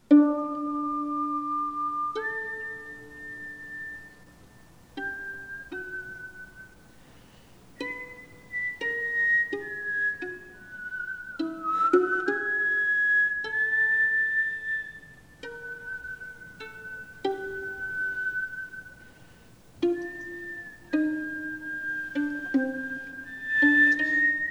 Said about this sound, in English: So there you go. That is the violin soloist Pekka Kuusisto whistling along with his string plucking, and, you know, not your typical way to begin a violin concerto.